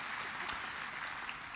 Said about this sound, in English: Yeah, we can clap for my daughter. That's cool.